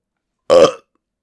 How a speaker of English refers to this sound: I burped.